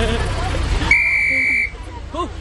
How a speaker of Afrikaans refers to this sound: Oh, daar blaas een oudjie nou op 'n fluitjie.